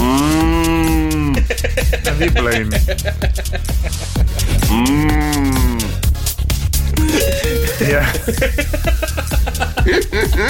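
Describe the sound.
A cow moos twice, loudly, each call long and drawn-out, a few seconds apart, over a busy, dense background with a brief bit of speech.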